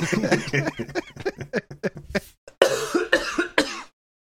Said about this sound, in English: Living the dream over here, except all the coughing.